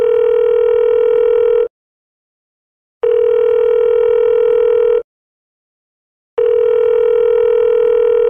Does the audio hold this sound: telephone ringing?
yes